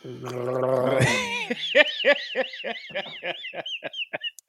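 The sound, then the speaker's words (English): Someone loudly and noisily sips coffee: a drawn-out slurp followed by a quick string of wet, gurgling pulses that taper off after a few seconds. “Let's get some good sips in to start off all these misophones.”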